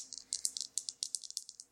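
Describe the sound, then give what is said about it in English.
Dice rattle and clatter in a quick, irregular burst of bright little clicks, about a dozen or more, at a fairly soft level with no talking. “I'm rolling my dice.”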